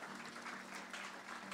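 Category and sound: crowd, audience clapping hands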